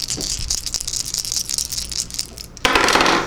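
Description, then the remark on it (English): Dice jangle and clack together in one hand, a dense run of small hard clicks, ending in a louder, fuller rattling burst as they are shaken harder or tossed. “Now just listen as I jangle all of my dice in one hand, hoping for excellent rolls.”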